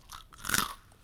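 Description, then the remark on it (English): A single crisp, crunchy first bite into a snack during a crunch test, fairly loud, with a sharp crackle peaking briefly before fading into quiet. No one speaks. “Alright, first bite. Ooh, that was crisp.”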